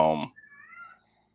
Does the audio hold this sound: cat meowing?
yes